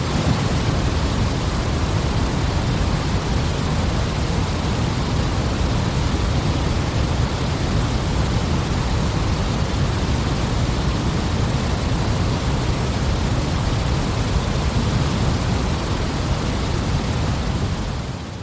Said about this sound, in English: This is my customised white noise, which is like waterfall plus rain plus... I love it.